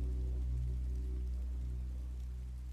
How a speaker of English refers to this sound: As you pause to watch, you hear the bubbling sound of water and know that a brook is running nearby.